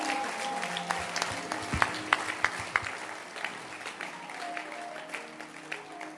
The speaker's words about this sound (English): Why don't you put your hands together for Bishop Ogo? Clap your hands for Reverend Duke.